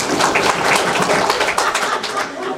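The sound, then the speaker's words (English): The Democrats in an audience clap together when asked, in a dense, steady burst of applause, loud and sustained throughout, with many overlapping hand claps blending into a continuous patter and no voices over it. “All the Democrats clap.”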